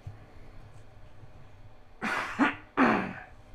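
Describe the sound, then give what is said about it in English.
After a stretch of near silence, a short run of dry, hacking coughs: two quick bursts followed by a slightly longer, harsher third. “And one other thing that I'm really trying not to do is cough, or, you know, that heaping dry cough that I usually do whenever I move my microphone out of the way.”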